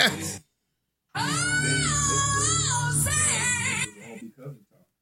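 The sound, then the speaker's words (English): A swooping eagle sound effect: a loud, high, wavering screech with sliding pitch that lasts a few seconds, then trails off into a few brief, softer cries after a short opening burst. “I'm swooping the bird in”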